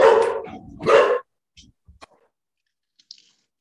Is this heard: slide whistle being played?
no